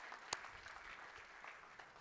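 A church audience claps steadily in a dense, continuous round of applause, with one sharp louder clap standing out near the start; no one speaks over it.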